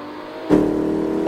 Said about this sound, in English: You are liable for any damages to the vehicle, so please stop the car, or at least slow down.